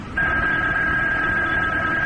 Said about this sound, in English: Yes. And then the phone rang. I let it ring.